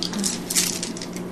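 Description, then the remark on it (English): Dice tumble and clatter across a hard table as damage is rolled in a tabletop game, a quick run of bright clicks and rattles lasting about a second with a low steady hum underneath. “You're rolling individual damage?”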